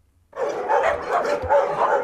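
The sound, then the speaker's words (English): A loud, continuous chorus of many dogs barking at once at Chester Hope Kennels, a boarding kennel housing dogs whose owners are at work or out of town, overlapping yaps and woofs after a brief quiet start, with no talking. “But while they're able to house cats and dogs whose owners are at work or out of town”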